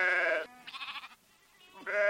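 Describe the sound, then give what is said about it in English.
Churro sheep bleat three times, loud. Each call is a wavering, nasal cry with short pauses between, and the middle bleat is pitched higher and thinner than the others. “Lyle McNeil will be back on the Navajo Nation, helping distribute another 30 churro rams, free of charge, to those committed to keeping sheep a central part of their lives.”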